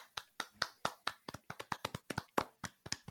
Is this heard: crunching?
no